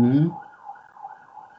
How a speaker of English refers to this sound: Police cars come.